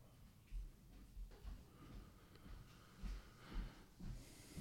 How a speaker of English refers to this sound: Shit ass Bay Area weather got my fucking allergies. I'm over here trying to finish talking. I'm like, scratch my throat. Like, so it's like, I'm trying not to sniff.